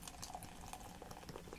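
Red Stripe beer pours from a bottle into a glass with a steady, bubbly fizz and soft gurgling, moderately loud, continuing without a break and with no talking.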